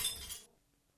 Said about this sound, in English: I'm in the bar. You're in the bar, and I'm going to ignore the sound effect because it's a terrible sound effect. You're in a bar, someone drops a glass or a bottle.